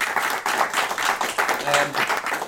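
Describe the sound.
A round of audience applause: dense, steady clapping from many hands filling the whole stretch, with a murmur of voices mixed underneath.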